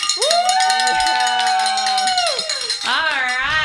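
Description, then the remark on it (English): A bell is rung to mark reaching 10 pledges in a pledge drive, with a bright, sustained metallic tone that rings on for a few seconds, then is struck again, its shimmering overtones wavering as it decays. “So who gets to ring the bell this time?”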